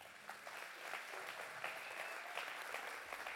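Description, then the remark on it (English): A church audience claps for Jesus steadily, a dense, even patter of many hands that holds at a fairly constant level for a few seconds with no voices standing out. “Give Amen. Jesus a hand clap.”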